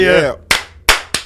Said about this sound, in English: Clap.